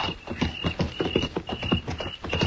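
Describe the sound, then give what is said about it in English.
Horse hooves clip-clop at a steady walking rhythm as riders ride straight ahead at night in the moonlight, fairly loud, with a thin high whine running underneath and no voices. “Don't look. Just ride straight ahead. Keep riding.”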